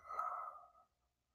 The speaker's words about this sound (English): So, we start by inhaling, and then we exhale. And like shrimp fried rice, you gotta have it twice. We're gonna breathe in, and we're gonna breathe out.